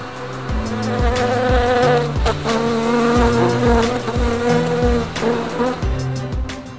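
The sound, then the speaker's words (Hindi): A loud honeybee buzz drones steadily with no voices, its pitch shifting up and down in short steps while sharp clicks and taps break through at a fairly regular pace. “लेकिन मधुमक्खी किसी को यूं ही नहीं काटती।”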